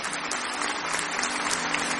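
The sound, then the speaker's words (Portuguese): An audience applauds Jesus at a service celebrating Christ's resurrection, dense overlapping claps forming a continuous, even wash of sound at moderate loudness for the full two seconds, with no voices standing out. “Eu queria que você aplaudisse Jesus.”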